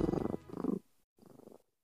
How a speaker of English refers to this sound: Oh, there it is. We're waiting for purrs to happen. Purrs happened.